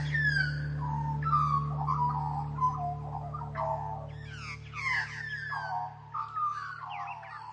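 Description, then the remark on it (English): Warbling, fluting bird song from an Australian magpie carries on throughout, with rich gurgling phrases rising and falling over a steady low hum, no one speaking. “Once you pay attention to a magpie's voice, you can't unhear it.”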